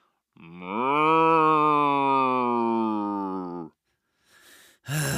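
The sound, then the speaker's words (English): A person imitates a cow's moo with one long, low, steady vocal drone lasting about three seconds, loud, followed by a soft breath and a short noisy burst. “Really, you want me to moo like a cow?”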